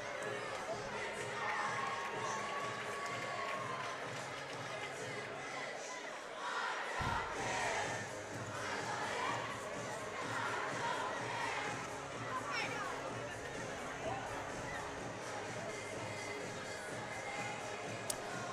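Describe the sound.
A large arena crowd at a basketball game roars and cheers continuously as the game between Lex and Madison ends with Lex up by three, a dense wall of shouting voices that stays loud throughout, with a brief swell of louder yelling partway through.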